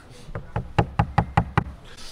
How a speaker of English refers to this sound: Yeah, I'm really optimistic. I mean, it's knock on wood.